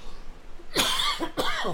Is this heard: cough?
yes